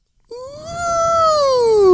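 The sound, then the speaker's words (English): A voice imitates a haunted creaking door with a single drawn-out, high whining tone that bends up and then slowly sinks, growing steadily louder over about two seconds. “can we get a little bit of ghost door from you just to get the levels?”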